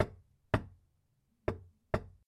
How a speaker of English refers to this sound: They were interrupted by a weak, tentative, faint, rather reluctant knocking at the door.